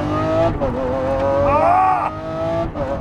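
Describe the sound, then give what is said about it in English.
A 2020 Lamborghini SVJ sports car engine roars loudly while being driven, taking a turn at 115 miles per hour, its pitch climbing in a sharp rev midway before dropping back to a steady, throaty drone. “I am driving a 2020 Lamborghini SVJ.”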